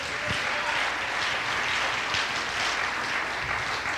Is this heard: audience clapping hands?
yes